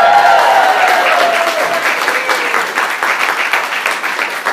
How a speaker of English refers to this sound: I want you to stand up. Stand up. Give me a cheer and a round of applause.